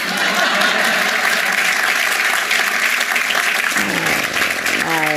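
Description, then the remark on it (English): A crowd applauds in a steady, dense wash of clapping that holds at an even loudness for about five seconds, with a voice starting to speak over it near the end. “And I thought you might clap for that.”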